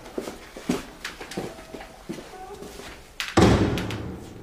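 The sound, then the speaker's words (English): A front door swings shut with a single loud thud and a short rumbling decay near the end, following a stretch of light tapping and shuffling sounds with faint voices in the background. “Shut the front door, please,”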